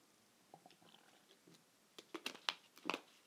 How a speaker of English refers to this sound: That was the loudest gulp I've ever heard. It was purposeful. It sounded like you had a waterfall in your mouth.